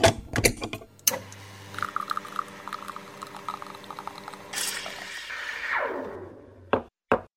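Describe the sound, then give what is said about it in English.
An espresso machine starts up: a few sharp clicks and knocks, a steady buzzing pump hum, then a rising hiss of steam and gurgling liquid, ending with two quick clunks. “So, let's start up the espresso machine and brew up another leadership espresso shot.”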